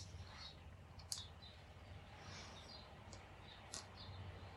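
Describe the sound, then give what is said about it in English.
Faint, high-pitched little squeaks and chirps from squirrels wrestling and jumping all over each other come and go over a steady low hum, with a couple of brief sharp clicks standing out, all quiet. “Little squeaks, funny little squeaks, that's what that is.”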